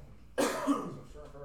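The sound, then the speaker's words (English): A harsh cough bursts out suddenly, with a second quick hack right behind it, then trails off into a rough, breathy throat sound. Nobody speaks. “Sorry, ladies and gentlemen. I'm coughing.”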